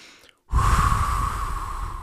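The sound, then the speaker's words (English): After a brief pause, a person blows out a long, forceful, breathy exhale lasting over a second, imitating the sound of breathing out. “That's the imagery we get with this God just breathing out is the product of scripture.”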